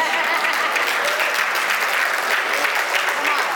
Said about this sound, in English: Come on, Pastor. Just a couple of hand claps.